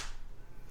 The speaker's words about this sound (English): Okay, so then I'll do 3, 2, 1, and then we'll all do a synchronized clap. Ready? 3, 2, 1.